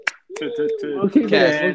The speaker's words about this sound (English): I think, again, just a little clap here. Keep this in.